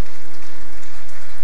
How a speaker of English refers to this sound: If you must clap, you might as well clap very well.